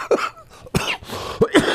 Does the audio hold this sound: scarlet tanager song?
no